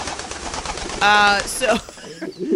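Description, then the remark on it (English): A single short pigeon coo, one steady, loud tone lasting under half a second, rises briefly above background noise, with people talking around it. “Like through a pneumatic tube. Yes. Pigeon.”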